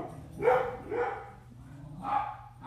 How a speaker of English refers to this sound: I thought we could all get some comic relief out of the barking.